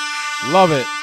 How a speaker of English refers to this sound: I'll give you an air horn. How's that?